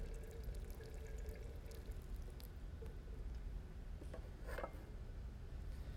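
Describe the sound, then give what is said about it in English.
Water is poured steadily onto seeds buried in soil, a continuous rushing trickle lasting several seconds, with a few brighter splashes toward the end and no voices. “And then the next thing you do is you water them.”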